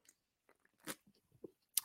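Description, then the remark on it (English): Someone sips from a cold can of 7 Up, with quiet slurps, small wet clicks and a swallow; two brief louder bursts stand out against near silence, and no one talks. “So let me take a little quick drink. Let's have a sip.”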